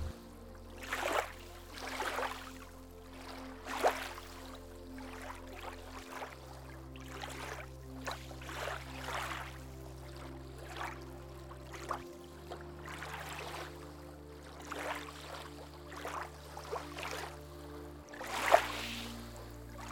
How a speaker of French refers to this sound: Les vagues continuent leur mouvement perpétuel, l'une après l'autre. Vous vous concentrez sur ce son et l'utilisez pour caler votre respiration sur le rythme des clapotis.